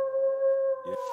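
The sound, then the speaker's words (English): A wolf howl sound effect: a single sustained howl holds a steady pitch with bright harmonics, then a brief breathy, rougher burst breaks in near the end. It sounds loud and alone, with no talking. “And I'm gonna go Rams with you guys, which means that Justin, even though he's not here, deserves a lone wolf call on this one.”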